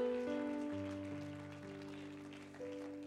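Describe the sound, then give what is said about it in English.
A church audience claps steadily as a hand clap to the Lord, a dense, crackling wash of many hands, while sustained organ-like chords hold underneath and shift pitch a few times. No one speaks. “Let's give that hand clap to the Lord one more time.”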